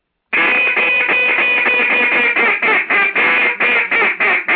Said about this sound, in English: Now, if I'm going to blow it just like normal, like original, just like an original, just like, you know, a lot of people don't like the rasp in the duck call. Right.